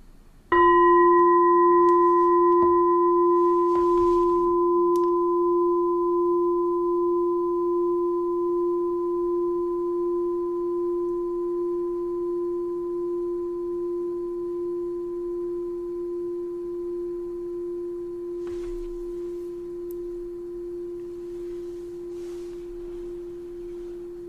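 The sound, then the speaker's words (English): A single meditation bell is struck once and rings out in a long, steady, pure tone with a higher overtone, slowly fading over more than twenty seconds with no talking. “I'll do this one last bell.”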